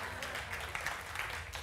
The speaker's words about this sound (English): a big round of applause